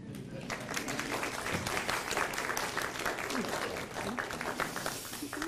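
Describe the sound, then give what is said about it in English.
An audience at Christ Church breaks into steady applause to welcome a covenant child of the church, many hands clapping in a dense, even patter that holds at a fairly loud level for several seconds without voices rising above it. “You all can clap.”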